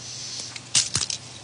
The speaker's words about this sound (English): If I can go back into history, let me take a little bit of water here.